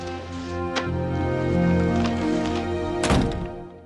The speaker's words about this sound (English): Close the door.